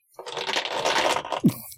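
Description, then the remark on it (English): A scattered clatter of many dice rattling and tumbling together on a table for over a second, with a final louder knock as they settle; moderately loud, no talking. “That was a lot of dice.”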